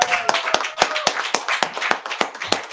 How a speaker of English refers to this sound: Can everybody give him another round of applause?